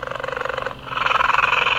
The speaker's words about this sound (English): Even her phone has a ringtone of a cheetah purring.